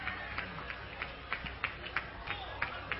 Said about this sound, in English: The crowd is giving her all they can here at the finish.